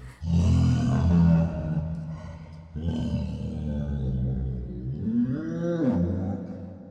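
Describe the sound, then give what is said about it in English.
Deep, hippo-like roaring mating calls of the Grand Faraniki, a fictional alien creature, played as music and echoing through a jungle, in three loud, sustained bellows, rich and rumbling, with the last one sweeping up and back down in pitch. No voices are heard. “They sure sound more like hippos than cats to me.”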